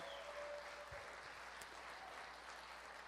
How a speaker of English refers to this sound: That was good. You guys did better on that hand clap than you did giving yourself a hand clap, so I guess that's good. You're loving your neighbor more than yourself there, so that's good.